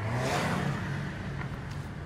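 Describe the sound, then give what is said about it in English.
Three cars speed past, driving down the center of a two-lane road while chasing an SUV. Their engines roar loudly with a steady, revving drone that holds strong throughout, with no voices. “Seconds later, a trio of cars whips past us, driving down the center of the two-lane road, going who knows how fast.”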